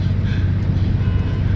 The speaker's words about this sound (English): I was standing outside my car in the middle of normalized stark weather with a regular-sized St. Theodosius to my left and cars honking their horns at me, wondering what the hell I was doing.